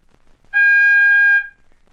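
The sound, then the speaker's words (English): A single steady electronic beep, the telephone time-announcement signal marking 11:41 and three quarters, lasting about a second. The pitch is fixed and bright with a buzzy edge, loud against silence, and no one speaks. “When you hear the signal, the time will be 11:41 and three quarters.”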